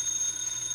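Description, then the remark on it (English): A telephone rings at 4 o'clock in the morning in a house in Beverly Hills, a steady, high-pitched electronic trill heard alone in one short, unbroken burst with no voices. “The phone. That's a phone.”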